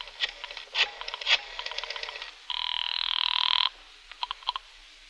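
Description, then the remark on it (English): A telephone rings on the line, heard from a phone booth outside a tobacco store: quick chattering trills, then a steady electronic buzzing ring lasting over a second, followed by a few more short bursts, with no voices. “I found a phone booth outside a tobacco store. While Sandra caught her breath, I made a phone call.”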